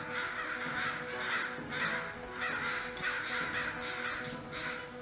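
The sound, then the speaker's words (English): A raven caws repeatedly, a run of about five harsh, rasping calls in quick succession, fairly loud, with no talking over them. “Could I try and feed the raven to make peace with it, at least?”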